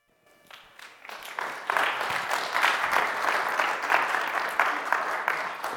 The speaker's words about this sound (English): Yeah, they're clapping for you